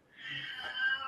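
A single drawn-out cat meow, slightly whiny and strained, holding steady for about a second at moderate volume with no voices around it.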